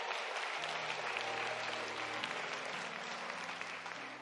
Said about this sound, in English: Let's get a Lord a hand clap.